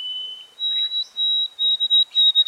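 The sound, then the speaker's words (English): A white-throated sparrow sings the shorter version of its song, clear and purely whistled: a long steady note, a slightly higher held tone, then a quick run of short repeated whistles at the same pitch, with no voices. “Researchers suggested that the classic song had died out to be replaced by the shorter version.”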